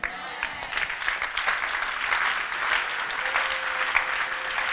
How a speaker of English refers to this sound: Oh, what a weak clapping.